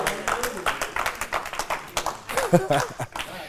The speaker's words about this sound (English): I don't know why y'all, five of y'all, eight of y'all clapping.